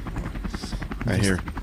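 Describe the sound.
Helicopter rotor blades of the 97.7 Hits FM "hits chopper" thump in a fast, steady low beat for under two seconds, fairly loud, with a brief voice-like tone rising over the chop near the end.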